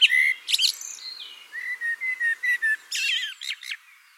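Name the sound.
blackbird singing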